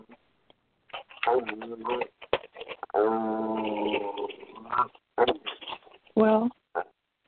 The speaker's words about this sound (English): Every time we're on the phone, that's my dog. That's my little dog.